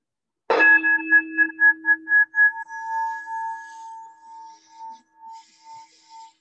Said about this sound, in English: So once again, I'm going to ring the bell, and then I'll be reciting the 5 remembrances.